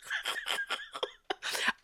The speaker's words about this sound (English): I'm trying to hold a cough in because I don't want y'all.